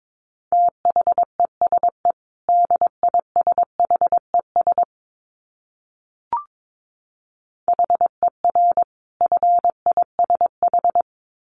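Morse code at about 22 words per minute: a single steady mid-pitched tone keyed in quick dots and dashes, two runs split by a pause with a soft click. No one speaks.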